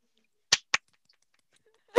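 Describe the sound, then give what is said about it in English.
A single person claps for themselves a few times, two quick sharp claps followed by a pause and one more, fairly loud against otherwise near silence. “Me clapping for myself.”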